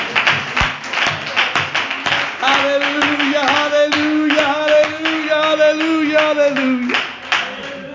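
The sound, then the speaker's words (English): An audience claps hands unto the Lord during worship, in a fast, steady rhythm throughout, loud and sharp, while a voice holds a long, wavering note over the middle stretch before the clapping carries on. “Come on, clap your hands and worship the Lord today.”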